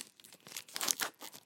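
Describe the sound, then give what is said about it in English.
Crinkly plastic wrapper on a piece of cheese being torn and peeled open, a series of bright, irregular rustling bursts that swell and fade over about a second and a half, with no talking. “Here, let me undo the cheese.”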